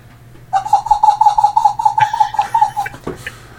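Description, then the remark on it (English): A person imitates a dolphin's chatter: a rapid, steady train of about a dozen squeaky, mid-pitched pulses lasting over two seconds, followed by a short burst of noise. “if you're in chat anywhere, can you do the dolphin noise for me?”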